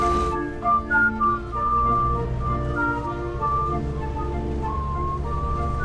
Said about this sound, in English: And then this character, she even whistles the tune of it.